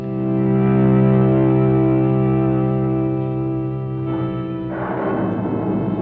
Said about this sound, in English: The storm swoops down. Rain begins to fall.